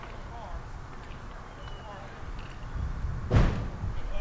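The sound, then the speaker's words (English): A single heavy door slams shut with a deep, booming thud near the end, loud, standing out over a steady murmur of crowd noise at a baseball game. “Something just went boom. I think a door slammed.”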